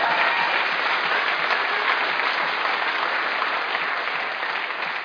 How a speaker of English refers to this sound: And so, yeah, there should be bigger applause than that for God healing people.